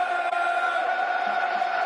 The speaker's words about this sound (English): Crowd getting behind the Lions, as you can hear, listeners. You can hear what's going on here.